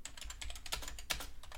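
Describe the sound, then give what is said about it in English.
Rapid, uneven typing on a computer keyboard fills the moment, a dense run of sharp plastic key clicks with no voices over it. “Is my keyboard broken?”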